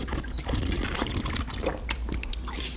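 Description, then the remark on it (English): Water is poured into a glass as people have some water after finishing a matinee, a steady splashing gurgle lasting a few seconds with a couple of sharp clinks, over a low hum. “Okay, we just finished this matinee, so we're getting ourselves together to we're having some water.”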